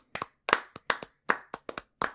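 Several sharp hand claps welcoming a guest onto a show, in a loose, uneven rhythm, about nine quick slaps over two seconds with brief gaps between, clear and bright with no voices.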